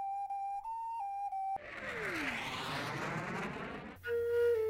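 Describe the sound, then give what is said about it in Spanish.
A Hungarian folk whistle or ocarina plays a few steady, pure notes with small pitch steps, then a burst of rushing noise takes over before a lower sustained tone begins near the end. “Existen diferentes tipos de este instrumento, por ejemplo, el silbato de guarida, la ocarina folclórica húngara o la ocarina de madera.”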